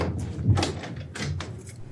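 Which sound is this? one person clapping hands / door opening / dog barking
door opening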